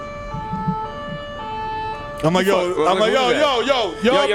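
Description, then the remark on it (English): A European police siren sounds loud, starting as a steady sustained tone before breaking into a wavering, warbling pattern, with voices overlapping in the background. “But every time I watch like a Jason Bourne movie or some shit, and he's like in like Moscow, imagine the cops pull up you, in like little tiny cars, like, meh, imagine meh, me meh.”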